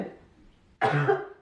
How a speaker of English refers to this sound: starts coughing directly into my mouth. Oh my God. I cannot breathe.